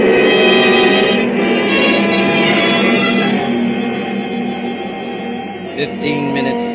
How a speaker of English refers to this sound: The great silver plane throbs against dead quiet. It's warm and stuffy in the cabin, despite the hissing ventilator.